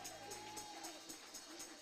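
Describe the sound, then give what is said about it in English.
An audience claps hands in praise to the Lord at a morning church service, a steady crowd applause with regular beats amid a faint wash of murmuring voices. “Can we give the Lord a hand clap of praise this morning?”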